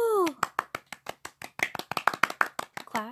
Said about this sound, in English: Clap. I'm good. Clap all around.